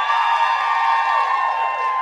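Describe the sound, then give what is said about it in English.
A crowd of women at a religious gathering roars and cheers on a preacher's call, in a loud, sustained wave of high-pitched voices that holds steady for about two seconds without any clear words. “And if I can just hear the ladies roar.”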